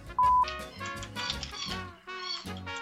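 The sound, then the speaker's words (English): A new dog's squeaky toy squeaking over and over in a loud, shrill series of rising and falling squeals, with only brief gaps between squeezes and a short steady beep near the start. “That's a squeaky toy.”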